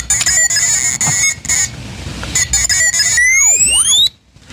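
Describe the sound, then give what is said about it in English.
A burst of robotic droid beeps and chirps from R2-D2 of Star Wars: rapid warbling electronic tones with high whistles and a rising then falling sweep near the end, loud and alone before cutting off abruptly. “Mike, what does R2-D2 have to say?”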